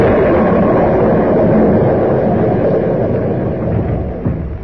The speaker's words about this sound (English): How long do these tropical storms last? I can't stand much more of this. Might be 10 minutes. Might be an hour.